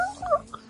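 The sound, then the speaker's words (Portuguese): A person's voice briefly imitates a rooster crowing, a short, high, warbling squawk at moderate volume with no other talking. “Não, a Siang é o galo cocorocô. Mas eu tô cantando.”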